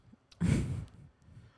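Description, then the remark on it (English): A single short burp into a microphone, with a breathy, airy edge that fades out after about half a second. Nobody speaks. “I thought I had to burp.”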